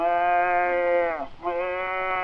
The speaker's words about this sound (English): Oh, look below, a calf.